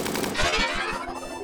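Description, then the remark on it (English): Rapid automatic gunfire rattles in a dense, steady burst, shots blurring together in a fast rhythm over a loud, cluttered background with no voices. “That gunfire is gonna rip him to shreds.”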